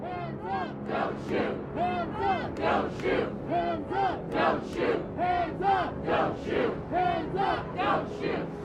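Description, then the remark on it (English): A large protest crowd in Santa Monica, California shouts in loud, rhythmic unison as police fire tear gas into it, the chant pulsing steadily about twice a second over a constant wash of many voices, sustained throughout. “You can see police here now firing tear gas into the crowd.”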